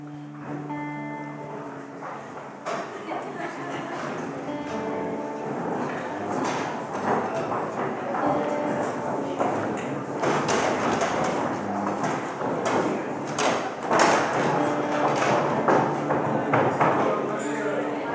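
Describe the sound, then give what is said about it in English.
Chairs scrape, knock and thud in a steady, overlapping clatter as a roomful of people rearranges the chairs into groups of four to six to pray together, with a low murmur of voices running underneath throughout. “But I would ask you right now, if you can just take 2 minutes quickly, maybe less than 2 minutes, take 10 seconds, 15 seconds, position your chairs into groups of 5, 4, 6, and pray together.”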